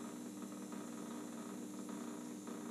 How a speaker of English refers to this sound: What you're hearing now is the sound of the ozonator. We're going to go for 20 minutes here. 20 minutes of the ozonator. I'm going to hold you close to the water. I'm not going to do it. I'm not going to risk it. Got the ozonator going on in here.